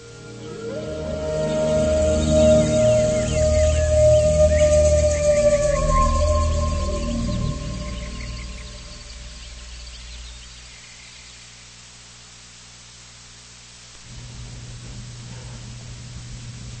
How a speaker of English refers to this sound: I like the chirping birds in this track.